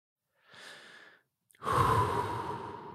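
Two deep breaths up close: a softer, airy inhale, a brief pause, then a longer, louder rushing breath that fills the rest of the moment. No one speaks.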